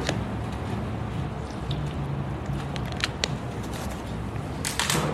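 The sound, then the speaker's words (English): Soft wet sounds of someone sipping water, with a few small clicks and slurps over a steady low background hum, no talking. “Take a sip of water.”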